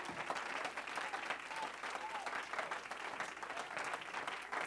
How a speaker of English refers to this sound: And if you believe it, why don't you give the Lord another great hand clap of praise in the house?